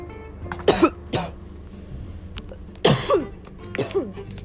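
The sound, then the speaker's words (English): Several harsh, raspy coughs after smoking a cone come in two close bursts, each with a few rough hacks and throaty clearing. The coughs are loud, with no talking between them. “Always gotta spit after the comb. And cough.”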